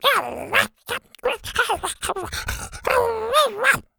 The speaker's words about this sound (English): He growled happily when he saw Zeta's triplets.